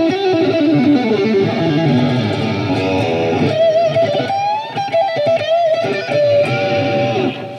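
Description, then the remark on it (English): Heavily distorted electric guitar played through a Fractal amp modeler plays loud, sustained crunchy chords, then shifts to a singing lead line with bent notes and bright, saturated overtones, with no voices. “I'm sure a lot of you know this, but it's incredible clean sounds, dirty crunches.”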